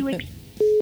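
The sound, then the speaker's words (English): A brief murmur of voice gives way to a single steady electronic phone button tone as a call is hung up, loud and clear, holding for about a fifth of a second before cutting off. “That's the number. That's the button when you hang up.”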